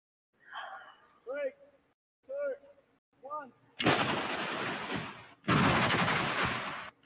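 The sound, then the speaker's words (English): A few short vocal exclamations, then two loud bursts of balloons popping as an arrow is shot through them, each a harsh, crackling rush of pops lasting over a second. “Why did that one not break? And the one behind it did.”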